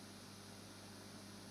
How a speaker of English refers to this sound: It doesn't happen when there's a programme on. It only happens in between when there's no broadcasts. Now it's just hiss.